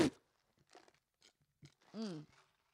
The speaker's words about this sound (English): Let's all take a moment to take a sip of our coffees.